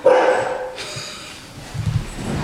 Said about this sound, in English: That, by the way, is Jerry Seinfeld, our dog.